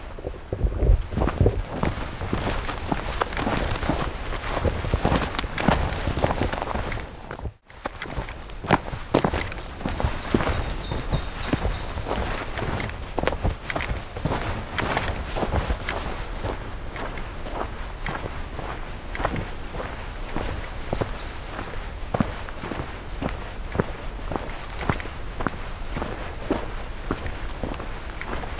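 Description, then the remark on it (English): Quick, steady footsteps crunch along a hiking trail at a brisk pace, with rustling and a soft wind rumble underneath; a high bird chirp briefly cuts through partway along. “Fast pace here.”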